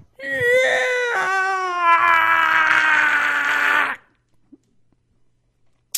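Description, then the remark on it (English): A person lets out a loud, strained shriek in imitation of a creature falling into lava, one sustained cry of about four seconds with a rough, harmonic tone that slowly sinks in pitch before cutting off into silence. “As it falls, it makes this really loud, shriek.”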